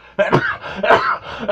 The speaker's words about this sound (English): All right. I'm allergic to this studio. I've never sneezed until I'm in this studio. Something's up with this shit. Dust problem or something.